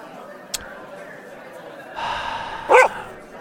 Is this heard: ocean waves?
no